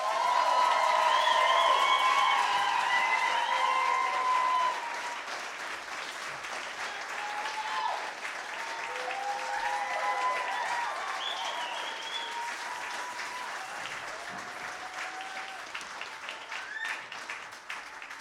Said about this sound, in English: a huge, huge round of applause for Fruin